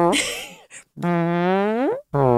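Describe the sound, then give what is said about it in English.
A person imitates a fart with their mouth: a short buzzy burst, then a long drawn-out voiced raspberry that bends upward in pitch, fairly loud, with another starting as it ends. “We also make farting sounds all the time.”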